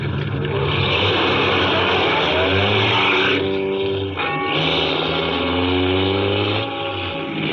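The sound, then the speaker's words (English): A car engine runs loud, revving and accelerating as the vehicle pulls back onto the road, its pitch climbing and shifting through gears, with steady road noise beneath and no voices. “After I got the car back on the road again, I felt like a fool.”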